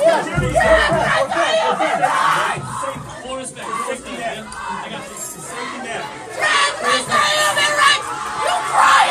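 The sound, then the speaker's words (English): A dense crowd of protesters shouts and yells together, chanting "trans rights are human rights", many voices overlapping loudly in a continuous roar of chanting and cries, with occasional higher-pitched whoops rising above the din, as a speaker is rushed off the stage. “Now, she's being rushed off the stage, and you can hear people saying trans rights are human rights and yelling wildly and demonically in her face.”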